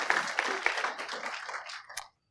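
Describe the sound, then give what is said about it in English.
An audience claps for the worship team, a dense, steady patter of many hands with a few sharper claps standing out, then tapers off and stops after about two seconds. “Yeah, we can clap for that, can't we not?”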